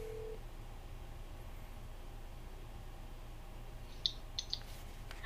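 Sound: telephone dialing and ringing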